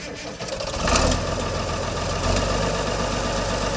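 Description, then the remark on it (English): The diesel engine of a 1960s model 1256 farm tractor rumbles at idle, fairly loud, with a burst of extra noise near the start before settling into a steady, low, throbbing drone. “This 1256 took the place of the 1206. And it was just another muscle tractor back there in the 60s.”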